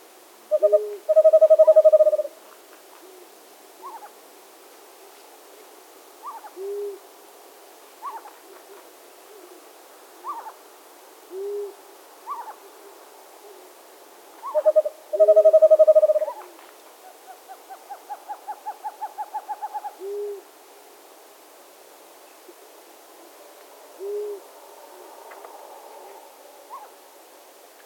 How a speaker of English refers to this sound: Also, listen for a couple of other owl species calling in this same recording. Besides the two western screech owls, there's a long-eared owl in the middle distance and a very distant great horned owl.